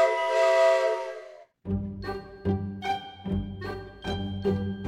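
A steam train whistle sounds a steady, chord-like blast, then falls silent as the loud, strong rhythmic chugging of the locomotive takes over.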